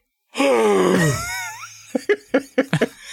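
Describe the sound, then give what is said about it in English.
A voice imitates a reverse gasp: a loud, drawn-out voiced exhale sliding down in pitch for about a second, followed after a pause by several short, choppy laughing bursts. “Can you do a reverse gasp? What does that sound like?”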